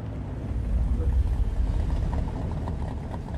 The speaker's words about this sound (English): My winner here is, and again, I've mentioned this already, it's the charger engine noise, specifically the tick over when it's on at idle prior to the drag race.